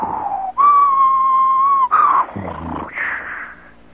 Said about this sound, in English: Where you're standing and the wind is howling.